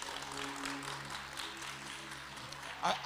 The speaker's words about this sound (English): Now clap your hands and thank God for the grace of God. Thank God for the grace of God.